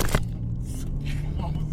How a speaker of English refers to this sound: That was the recorder. Recorder. Checking to make sure we're still running. Yeah, it's still running, but it took a dive off the armrest here.